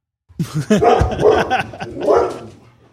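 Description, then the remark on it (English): A dog, having run across the house, barks and yips out a window in a run of quick, loud bursts over about two seconds, with a few short pauses between the barks. “Ran across the whole house to bark out the window.”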